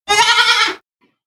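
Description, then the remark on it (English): A dairy goat at the American Dairy Goat Association National Show lets out one loud bleat lasting under a second, wavering and nasal, then cuts off into silence. No one speaks. “We are live from the American Dairy Goat Association National Show”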